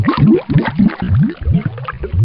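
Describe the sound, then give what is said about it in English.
A water cooler gurgles with a quick run of bubbly glugs, each one rising in pitch, repeating in a loose, uneven rhythm at a steady, fairly loud level with no talking. “So if you're ready, meet me over at the water cooler.”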